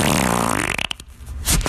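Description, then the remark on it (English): A long, loud, buzzing fart with a rising, wavering pitch breaks into a few sputtering pops, then ends with a brief hissing, sucking gasp of air. “The one I remember that sucks back into your body cavity. Yeah. At the very end, there's a backdraft.”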